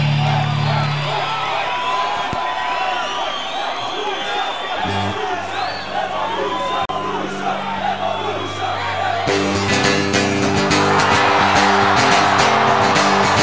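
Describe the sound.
A concert crowd chants and shouts together in a steady, loud roar of many voices, with whoops rising through it and the noise swelling brighter and harsher near the end.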